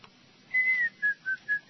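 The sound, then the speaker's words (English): Someone whistles a brief, cheerful tune: one held note followed by four short, bouncy notes in a quick rhythm, clear and alone with no talking. “Just whistle a happy tune.”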